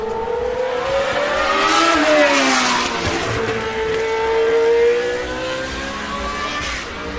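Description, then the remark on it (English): A Lotus 79 Formula One racing car roars past, its high, harmonic engine note swelling and bending in pitch as it nears and recedes, loud and continuous with no voices. “That was a Lotus 78, possibly? 79!”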